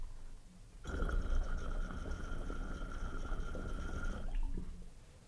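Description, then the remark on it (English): Water bubbles, pops and churns through percolators, starting abruptly and running steadily for about three seconds with a faint whistling chirp over the gurgle, then stopping. Fairly loud, with no talking. “Love the sound of that water when it moves and pops through those perks.”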